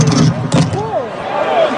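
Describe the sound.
A couple of heavy thuds as a man runs on stage at a hip hop event and tackles another man at full speed, amid loud, continuous crowd commotion with raised, shouting voices rising over the din.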